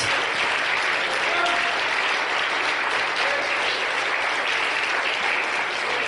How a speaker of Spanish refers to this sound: Es más, démele un aplauso.